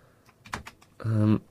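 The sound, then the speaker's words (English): A few sharp clicks of computer keyboard keys being pressed in quick succession, followed by a brief louder humming tone. “Oh, I just found this key on this keyboard, and it looks odd. How do I get that one to come up?”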